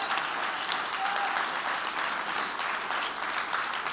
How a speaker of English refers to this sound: Oh, clap your hands and praise Him in the building.